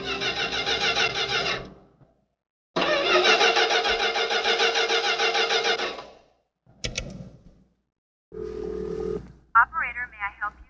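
A car engine cranks in two long grinding bursts that fail to catch, followed by a short sputter and a rising electronic warbling tone, like a phone being dialed. The car has engine trouble in the desert at night, at the junction of Route 61 and Diamondback Road.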